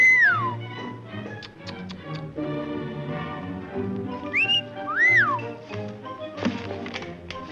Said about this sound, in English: Uncle Oscar has gone to the park with Skyler, where he encounters the beautiful Dorothy Manners after the parakeet whistles at her.